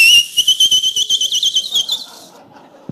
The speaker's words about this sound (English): Stenagmos is that sound at your house when the kettle's boiling.